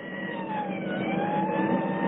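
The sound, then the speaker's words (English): A police car, Car 3, with its siren switched on, roars loud as it accelerates hard in pursuit of a suspect south on 61st at high speed, its pitch climbing steadily, with no voices over the continuous rush of motor noise. “A driver kicked the siren open, and we dug out in pursuit.”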